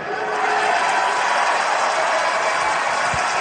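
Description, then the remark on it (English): A large arena crowd at a professional wrestling event cheers in a steady, dense roar that stays loud and unbroken throughout, with no clear individual voices standing out. “And the crowd all cheers, and then he goes, welcome to SmackDown!”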